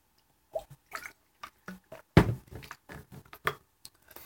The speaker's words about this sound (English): Take a drink of water real quick, sorry.